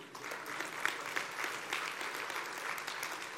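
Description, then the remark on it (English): An audience at City Life church claps steadily for a few seconds after a prayer, a dense patter of many hands at moderate loudness with no voices over it. “You guys are reluctant clappers tonight, right?”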